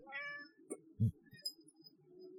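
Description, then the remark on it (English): A person imitates a cat with a single drawn-out, rising meow, followed by a dull low thump and a faint hum in the background. “Sorry, I just meowed to see if it would work.”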